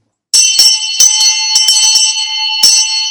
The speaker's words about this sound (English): Long bell.